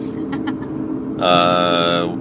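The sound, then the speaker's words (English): Steady low rumble of a car cabin on the move, driving to Walmart, fills the whole stretch, with a sustained voice-like tone rising over it partway through. “are driving in the car, talking about bridal showers, going to Walmart.”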